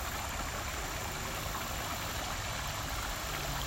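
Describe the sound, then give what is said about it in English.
A steady, unbroken rush of flowing creek water, fairly even in volume, with a bright hissing wash and a soft low rumble beneath, and no voices. “And we're just going to do some breath work and then listen to the creek for a few minutes.”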